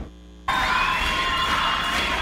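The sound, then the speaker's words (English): After a brief near-silent moment, a live concert crowd erupts into loud, sustained cheering, a dense roar threaded with high-pitched shrieks and whistles that holds steady to the end. “Live concerts.”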